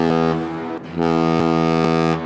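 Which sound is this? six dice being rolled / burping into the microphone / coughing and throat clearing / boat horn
boat horn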